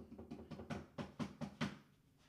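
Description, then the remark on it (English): A run of about six or seven sharp knocks in a steady, fairly quick rhythm, each a dull thud with a crisp attack, growing slightly louder before stopping abruptly. No one speaks. “What were you knocking for?”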